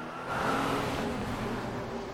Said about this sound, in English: The instant Raz goes over to the mailboxes, the Mustang restarts its engine and pulls out of the parking lot like with a full speed tire squeal.